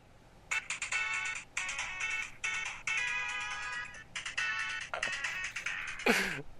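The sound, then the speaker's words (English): A tinny, bright electronic tune from a Sonic video game plays through a small phone speaker in quick melodic phrases, ending with a short descending swoop. No one speaks over it. “Yeah, I've got three Sonic songs on my phone.”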